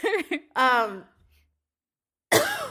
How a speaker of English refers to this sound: sorry for coughing